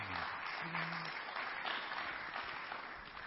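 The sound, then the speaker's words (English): An audience clapping together in sustained, dense applause as a morning hand clap of praise to the Lord, steady and fairly loud throughout, with a brief low tone briefly audible beneath the clapping. “So let's give the Lord a hand clap of praise this morning.”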